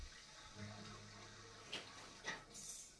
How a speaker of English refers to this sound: What is happening? Where's the water pouring in from? Why is that lady the bottom freaking of out? The door. It's just dumping, diggity dumping.